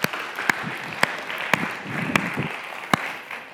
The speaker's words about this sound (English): So let's just give God a clap for everything he's doing with our group.